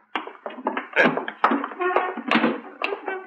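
An armchair is shoved and dragged across the floor back against a wall, with a run of uneven scrapes, squeaks and soft thumps for a few seconds, no talking.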